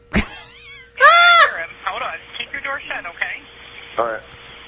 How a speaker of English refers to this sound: He's charging us. He's at our door, bedroom door. One moment, okay? Damn, you can hear it scream. You heard it? Oh, that cat is like, bring your ass out here. I will tear you to pieces, fucker.